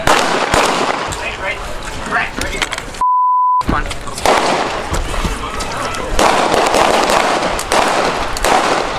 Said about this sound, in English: multiple gunshots were fired at a memorial in Minneapolis to mark a year since the murder of George Floyd